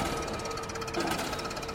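Rapid, steady mechanical hammering with a dense metallic clatter, loud and continuous, like heavy factory machinery pounding away through the night without pause.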